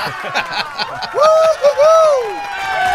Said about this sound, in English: And the crowd goes wild.